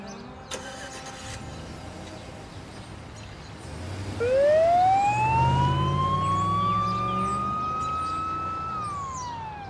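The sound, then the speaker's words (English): An ambulance siren, from an ambulance into which a man on a stretcher has been loaded, starts up partway through, its loud tone rising and then holding a long, steady wail over the low rumble of a vehicle engine. “His son rushed to his car, I assume to follow the ambulance to the hospital.”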